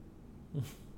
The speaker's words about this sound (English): Is that rumbling? Is that a thunder or was that a dog? No. That sounded like the dog that was rumbling.